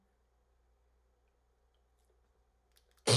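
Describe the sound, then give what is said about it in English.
Someone sips a drink and lets out a soft, wet gulp. A sudden loud burst of noise cuts in right at the end. “Why did I hear that gulp?”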